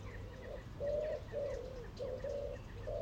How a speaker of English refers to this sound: I don't know if you can hear that. The pigeons are cooing. It's that time of day here. I hope it's not distracting.